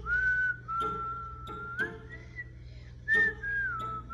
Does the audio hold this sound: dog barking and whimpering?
no